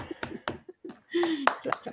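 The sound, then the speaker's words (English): A thin, polite golf clap sound effect: a handful of light, crisp handclaps spaced unevenly over about two seconds, mixed with voices and a brief gliding tone in the middle. “Do I have clap? No, I don't know. You do, but it sucks. It's like a golf clap.”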